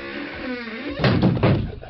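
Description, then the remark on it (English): A door swings shut with a solid thump about halfway through, preceded by a faint creak of movement; a single fairly loud closing sound with a brief rumbling tail. “Let me close this door.”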